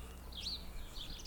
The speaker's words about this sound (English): We have a lot of house sparrows around here. Magpies, crows. It's lovely. It's really nice to pick them up on a stereo microphone.